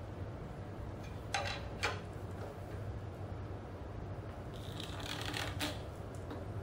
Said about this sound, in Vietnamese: Bây giờ tôi thử đóng thêm cái dấu vào.